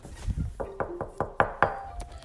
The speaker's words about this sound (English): Well, first we have to knock on the tree and kind of wake him up and tell him that we're here.